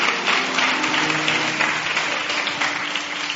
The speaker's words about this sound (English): Would you clap your hands for these men? Would you do that? Praise God.